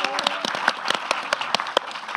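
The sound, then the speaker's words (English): An audience applauds steadily as the stars and director are introduced: a dense patter of many hands with sharp, prominent claps popping out of the wash, and a faint murmur of voices mixed in underneath. “I said to you, James, that you couldn't hear your name over the rapturous applause.”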